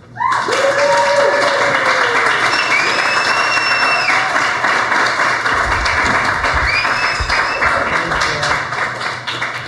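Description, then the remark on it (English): Loud, sustained applause from an audience welcoming a blues band, dense clapping filling the whole stretch with a few faint whistles and cheers riding on top before it slowly thins toward the end. “What wonderful applause.”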